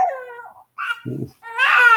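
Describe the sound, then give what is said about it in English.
A baby fusses angrily in short, strained wails, broken by a wet, gurgling choke from milk caught in the back of its throat, then a louder rising cry; the baby wants its bottle but will not suck on it or swallow the milk. “The sound of I'm angry, I want my bottle, but I don't want to actually do the sucking of it.”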